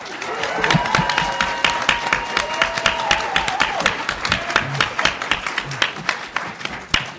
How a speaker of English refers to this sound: All right, so you cannot start a panel better than that, except for one giant applause for our panelists.